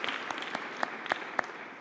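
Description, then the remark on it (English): An audience at a college event applauds the sophomores, many hands clapping in a dense, steady patter with a few sharper individual claps standing out. No voices are heard over it. “So let's give a round of applause to our middle children of college.”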